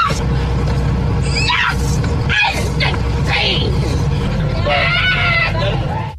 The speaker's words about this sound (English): Video footage shows her climbing on the plane seats and screaming. The passengers and cabin crew are seen detaining her.